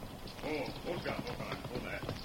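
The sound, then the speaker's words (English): Horse hooves clip-clop in a steady walking rhythm on a trail after rain has let up, fairly loud, as a wounded man's horse is brought over, while people talk over the sound. “Hold on. Let me bring fella's horse.”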